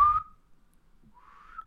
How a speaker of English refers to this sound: But you see, that doesn't work because I tried to teach some of our coworkers how to whistle just a normal whistle, and they couldn't do it. Well, this one's easier, actually.